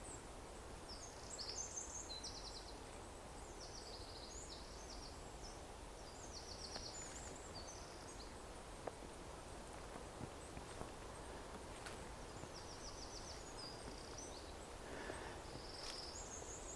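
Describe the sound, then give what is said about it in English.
A songbird sings bright, high chirping phrases in bursts at the start and again near the end, fairly distant over a steady outdoor hiss with faint rustling footsteps. “Listen, a beautiful songbird singing.”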